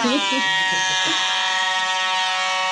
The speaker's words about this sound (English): Air horn sounds it's, so differently. It's long and long.